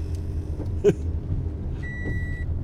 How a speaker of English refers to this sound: And this is my third week in this baby car. Man, this thing gets good gas mileage compared to what I'm used to.